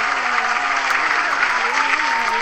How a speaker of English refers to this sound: Alright, let's get a round of applause, audience, for me and my friends on this episode of the Shenanigans Podcast.